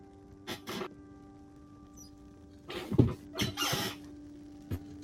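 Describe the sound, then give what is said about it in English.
Gulls squawk in a few short, shrill bursts: a quick pair early on, then a louder cluster of cries near the middle and one brief call at the end, with no talking. “Oh no, that's the sound that all of the outset gulls make.”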